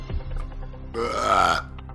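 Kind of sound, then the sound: human body sound, a loud belch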